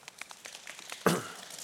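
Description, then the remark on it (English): An audience of kids and teenagers imitates rain in an imagined storm with a dense, crinkly patter of many small taps and rustles, with one sharper, louder surge of crackling about midway before it settles back to a steady patter. “So as we imagine the storm, we imagine the sky getting dark, I want all the kids, all the teenagers, to start making it sound like rain.”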